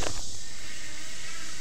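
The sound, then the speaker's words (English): A dense, continuous chorus of cicadas buzzing in the tree canopy on Red Mountain in Birmingham, Alabama, a steady high-pitched drone that holds at an even loudness throughout, with no voices. “All cicada, everything.”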